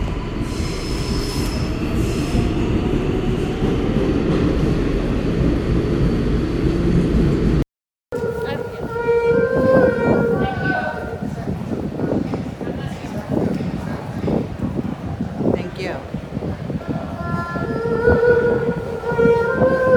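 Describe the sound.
A New York subway train rumbles along, wheels squealing in high, wavering tones over a steady roar of rail noise, with a brief cut partway through and faint voices mixed in.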